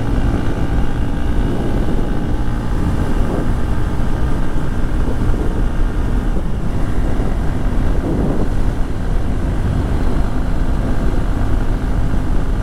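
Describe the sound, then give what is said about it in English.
A Honda XR150L motorcycle engine drones steadily while being ridden in traffic as the wind picks up, its hum mixed with constant wind rush, with no one speaking. “And show you how this thing does in traffic.”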